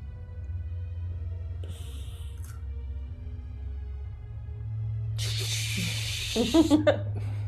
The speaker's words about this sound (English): He, just to clarify, he actually filled a cup with water. He didn't just go.